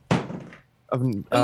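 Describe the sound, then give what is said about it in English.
A Galaxy S10e phone without a case is knocked off and strikes a hard surface with one sharp thunk that rings briefly before fading, then people start talking right after. “I knocked my phone off the...”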